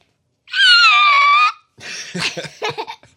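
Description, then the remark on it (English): A voice imitates a creaky car door opening: one drawn-out, high, slightly wavering squeal lasting about a second, followed by a string of breathy, laughter-like vocal bursts. “What sound does it make when we open up the car door?”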